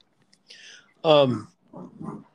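An excited dog lets out a high whine, then one loud, close bark followed by two softer, lower yelps in quick succession.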